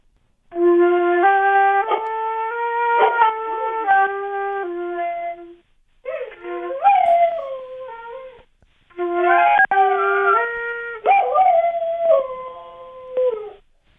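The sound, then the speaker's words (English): A dog howls along as its owner plays an old flute, long wavering howls blending with sustained flute notes in three loud phrases separated by brief pauses; no one speaks. “Is your dog, is he having fun? Does he look like he's, it's a pleasurable, or is he in great pain?”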